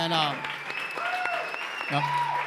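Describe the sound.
An audience claps steadily, a dense wash of many hands at an even level, with voices cheering and shouting over the applause throughout.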